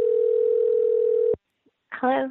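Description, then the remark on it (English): A steady, continuous telephone dial tone hums for over a second while a call is being placed, cuts off abruptly, and after a short silence a voice begins speaking. “Let's see if we can get her on the phone right now.”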